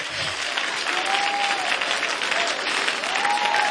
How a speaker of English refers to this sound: Oh, God, if you believe that, clap your hands again. Come on, praise God.